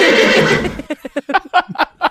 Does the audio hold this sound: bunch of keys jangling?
no